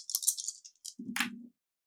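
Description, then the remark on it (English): A bright, quick rattle of three dice shaken together during a game, then a short clatter and low rumble as they tumble onto a surface and settle, the highest result a 6. No voices. “Go ahead, roll that dice.”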